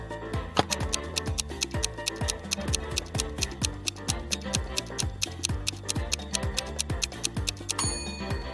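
A clock timer ticks steadily and quickly, roughly four crisp ticks per second, over a busy tonal backing with repeating low, falling notes. There is no talking.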